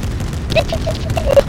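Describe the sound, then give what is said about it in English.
Muffled video game gunfire rumbles in low, boomy bursts, mixed with short electronic tonal blips. It stays fairly steady throughout, with no clear speech. “Now we need to go to the gunshot.”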